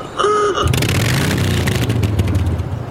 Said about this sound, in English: That wasn't even a car. That was a Harley, wasn't it?